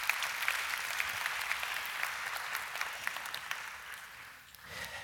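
A crowd claps steadily in dense, crackling applause that holds for about four seconds, then thins out and fades as a low murmur rises at the end.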